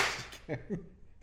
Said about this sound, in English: Do we have to do a big clap thing? No. Can I do it anyway?